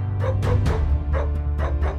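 A series of dog barks arranged as a barking version of a TV theme tune, around six in quick, rhythmic succession like a tune, loud, over a steady low hum with no talking.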